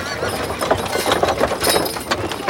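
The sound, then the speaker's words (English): Horse-drawn carriages, something like 55 of them, rolling up to a spa around the end of the 18th century, with a steady patter of clip-clopping hooves over a dense, rumbling bed of wheel and street noise, fairly loud and continuous throughout. “I read somewhere that on one day in the, maybe it was the end of the 18th century when they were digging out the canal, something like 55 carriages rolled up.”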